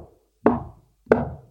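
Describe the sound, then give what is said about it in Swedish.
Two solid knocks on the door of a home in a small village, spaced about two-thirds of a second apart, each a dull thud with a short ringing decay, followed by quiet. “Och knackar på dörren.”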